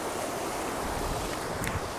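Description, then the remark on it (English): Steady, continuous rush of flowing creek water, a broad hiss and gurgle that holds an even level throughout, with no voices. “I'm going to head back over here across the creek.”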